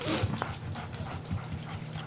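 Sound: dog whimpering and panting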